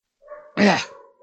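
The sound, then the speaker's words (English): A dog outdoors gives a short whine that breaks into one sharp bark, moderately loud and heard alone with no voices. “I think your dog is depressed. Yeah, he's out there mad at something, I guess.”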